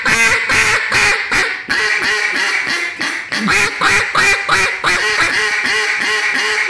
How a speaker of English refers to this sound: This is the thing with a duck call, in my opinion, and Rick said that too that day, is that when you get it, you will be able to string your notes out forever.